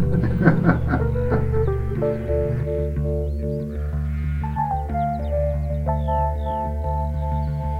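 Sheep bleat repeatedly, their wavering cries layered over a steady, droning musical backdrop at a fairly loud level, with no one talking.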